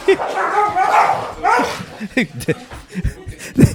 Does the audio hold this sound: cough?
no